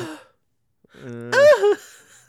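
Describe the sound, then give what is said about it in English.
A single voiced gasp, fairly loud, its pitch swooping up and then down on a breathy 'oh'-like inhale. A voice performing the gasp, with a short breath before it and quiet around it. “She jumped. She gasped again.”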